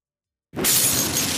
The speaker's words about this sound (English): Man, they're breaking glass and everything.